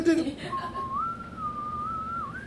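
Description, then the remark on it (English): A person whistles the X-Files theme, a clear, fairly loud sustained tone that holds and slowly bends up and down in pitch for about two seconds, after a brief vocal sound. “The X-Files theme song.”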